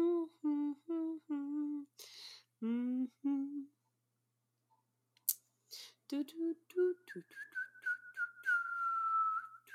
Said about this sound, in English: I'm really bad at whistling.